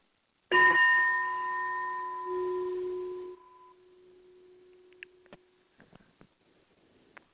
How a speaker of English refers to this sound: So I'm going to end this part with just using, I actually have a little gong thing here, and I'm just going to play that for you just for a second so that you can hear. This is kind of a very relaxing therapy.